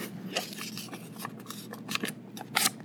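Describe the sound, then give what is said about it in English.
A sheet of paper is folded in half again and again, giving crisp, crackly rustles in quick bursts, with a sharper crinkle near the end. Fairly quiet, with no voices. “Can you keep folding it in half?”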